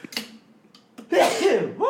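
A single loud sneeze bursts out after a brief quiet pause, with a sharp inhaled lead-in and a forceful, breathy release.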